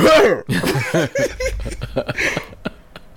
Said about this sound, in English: That's a really loud cough, duh.